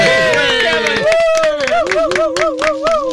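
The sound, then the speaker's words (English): A group of people cheers loudly, several voices whooping and hollering with wavering pitch, while sharp hand claps and stomps punctuate the noise for about three seconds. “Why don't you guys cheer real quick, see what it'll give you.”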